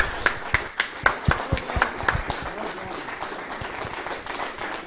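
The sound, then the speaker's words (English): An audience claps for the contestants of a chicken nugget eating contest in a warm round of applause, with a few sharp, distinct claps standing out early before the sound settles into a steady, dense patter of hands. “So, well, I think a final big round of applause, please, for our magnanimous contenders.”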